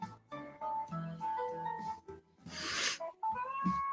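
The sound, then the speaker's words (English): A cat, Sugar Kitty, meows in a few drawn-out, wavering calls, interrupted midway by a short breathy rush of noise before one more meow. “What's up, Sugar Kitty?”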